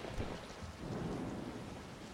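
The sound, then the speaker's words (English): Steady rain pours down in a dense, continuous hiss, with a deep low rumble underneath like thunder. No voices are present. “Why is it raining?”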